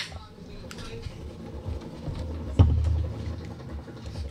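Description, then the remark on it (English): A helicopter's engine and rotors rumble in a steady low drone throughout, with a brief sharp thump partway through. “Fucking helicopter.”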